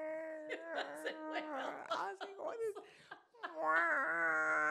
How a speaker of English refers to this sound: And put me whales, in a beach. The whale sound. It wasn't whales.